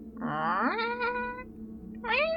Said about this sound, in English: Oh, it's the cat. Oh, I don't want to hurt the cat.